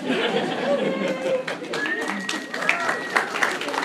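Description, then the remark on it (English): An audience claps in a dense, steady patter lasting several seconds, mixed with crowd chatter and a few high whoops and whistles rising over the noise. “Don't clap for that.”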